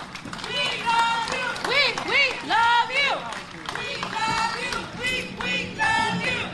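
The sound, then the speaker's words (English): A crowd applauds steadily for several seconds, the dense clatter of clapping mixed with rising and falling whoops and cheering voices throughout. “Let's give Harriet's Wildest Dreams a round of applause as well for organizing these mothers.”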